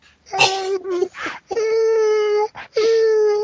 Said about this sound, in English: There seems to be a dog near your microphone. I'm not sure what happened there, but.